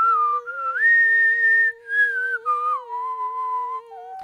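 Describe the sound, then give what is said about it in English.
A person whistles the intro of a film theme song as a slow, breathy melody with sustained, gliding notes, like a pan flute. The tune is clear, with no talking over it. “I didn't know I could whistle the intro to Titanic”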